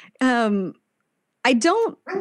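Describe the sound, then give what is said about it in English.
A dog lets out a drawn-out, falling whine, then a quick cluster of sharp barks and yelps after a short pause, loud, with no one talking. “Dog doesn't like it either.”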